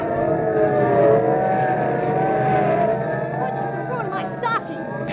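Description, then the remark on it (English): Police cars roar past with wailing sirens, the rising and falling tones riding over a steady engine rumble that stays loud before easing off slightly near the end. “Okay, listen, sirens. Yeah. Look, police cars, and are they rolling?”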